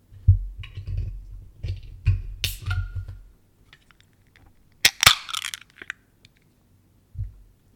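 A run of low thumps and handling knocks, then a sharp metallic snap as a 16-ounce can of Free Will Brewing Company's Scarecrow Autumn Spiced Ale is cracked open, followed by a short burst of fizzing hiss as it is poured into a Spigolo tulip glass, with a soft final knock.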